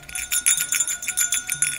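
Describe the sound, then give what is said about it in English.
A voice mimics a ringing bell with a quick, steady series of bright, high, tinny pulses, about ten strikes in under two seconds, moderately loud and with no other talking; the sound stands for a Thaumaturgy spell in a tabletop role-playing game, made to surprise goblins. “Like a bell being rung?”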